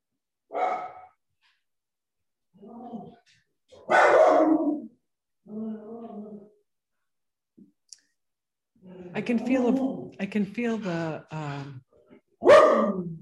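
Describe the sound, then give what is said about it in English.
A dog barks in a series of sharp barks with irregular pauses between them, some coming in quick clusters and a few sounding whiny or strained. “Your dog's looking at mine.”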